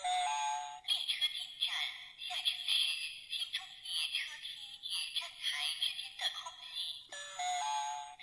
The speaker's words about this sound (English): It also makes this sound, but this is just a long announcer in China telling us that the train's about to come to a stop.